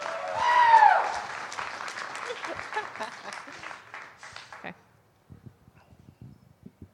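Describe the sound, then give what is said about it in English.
A live show audience bursts into dense, steady applause for themselves with a brief whooping cheer at the start, then it thins out into a few scattered, fading claps. “Clap for yourself.”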